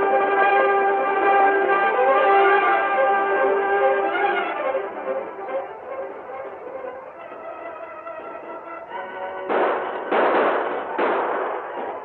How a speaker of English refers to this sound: Several buildings in the gap were in flames. Others had been struck by many fire arrows. The defenders divided their time between firing at the attacking savages and beating at flames with water-soaked swabs.